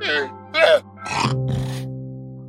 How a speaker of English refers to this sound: Aside from the chickens, there are also pigs, horses, cows, llamas. See? Here's a llama.